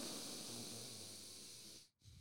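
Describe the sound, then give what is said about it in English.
A long breath drawn in through the nose, one side partly blocked with mucus, with a hissy, slightly congested rasp, ending in a brief pause before the next breath begins. “That's a bit of an ASMR for you. I mean, you can tell I've got a bit of a bogey up one end.”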